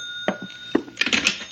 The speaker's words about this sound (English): That ringing noise is back in my skull. You're a ham bone. That's the telephone.